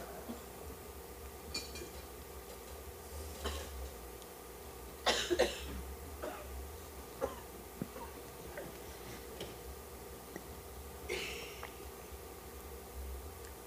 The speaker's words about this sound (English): Where did those coughing sounds go, and can we ever find them again? Those exact ones.